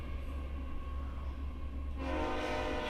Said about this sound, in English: Let the train go by.